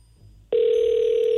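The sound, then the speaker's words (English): A phone line ringing on an outgoing call: after a short, quiet moment, a loud, steady electronic ringback tone starts abruptly and holds unbroken to the end, with no voices. “Okay, it's ringing at least.”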